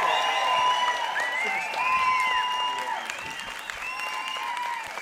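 A crowd claps steadily and loudly for several seconds, the dense patter never letting up, while scattered voices cheer and whoop over the applause.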